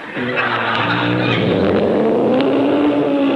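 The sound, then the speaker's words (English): A loud, sustained lion roar sound effect, a deep rumbling growl that rises slightly in pitch toward the end and holds steady for several seconds, with no talking over it. “Hey, you hear that, fellas? The lion's just north of us.”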